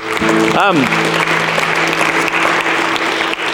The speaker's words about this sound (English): Lord Jesus, we're clapping. Let's clap for him.